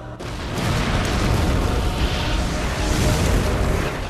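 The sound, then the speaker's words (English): Drones fire and explode in a loud, nonstop barrage of deep booms and crackling bursts over a heavy low rumble, sustained for about four seconds with no voices. “Firing drones.”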